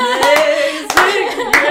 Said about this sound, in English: I'm getting a slow clap, guys.